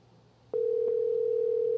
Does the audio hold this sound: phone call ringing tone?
yes